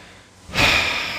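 A person makes one loud sniffing inhale, imitating a dog. It is a sharp, breathy burst that starts halfway through and holds steady to the end, with no talking.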